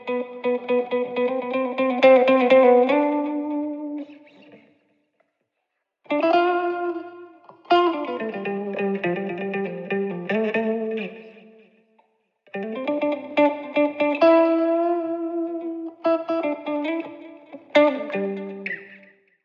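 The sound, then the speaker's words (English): An effects-laden electric guitar solo plays sustained, bending and sliding notes in several phrases separated by short pauses, with a shimmering chorus-like sound that pans slightly left and right. “Effect also picks up all the slides and the bends and pans them a little bit left and right.”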